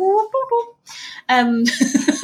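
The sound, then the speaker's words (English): A voice imitates the whistling of the Clangers with warbling, whistle-like calls in a few short sliding tonal phrases, followed by a breathy hiss and a wobbling, gurgly burst, fairly loud with no words spoken. “This the clangers clanging, are in it.”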